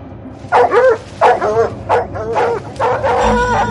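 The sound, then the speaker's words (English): Several loud barks in quick succession from a team of cadaver dogs trained to find human remains, a few with whiny yelping edges, over a low background rumble; no one speaks. “They brought in a team of cadaver dogs. Dogs trained to find human remains.”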